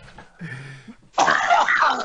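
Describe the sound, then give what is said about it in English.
A man who has just smoked a big bong hit clears his throat, then breaks into a loud, harsh coughing fit, rough, raspy hacks that run without pause to the end. “He's coughing up a lung. He just smoked a big bong toke.”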